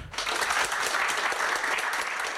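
An audience claps steadily for guest Tom Wainwright, a dense, continuous patter of many hands that starts quickly and holds at an even loudness throughout.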